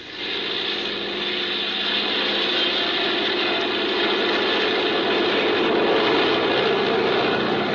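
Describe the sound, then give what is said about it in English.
A small propeller plane's engine roars steadily and loudly, its drone swelling slightly as it builds power for takeoff, with no voices heard. “Well, I guess we can take off. Here we go.”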